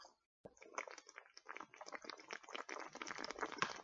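Someone drinks water, with a few seconds of wet gulping and slurping sounds after a brief moment of silence. No one speaks.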